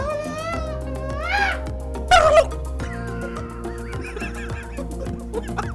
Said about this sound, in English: What's up, chicken shit? That's a turkey, you dumbass. Turkey shit.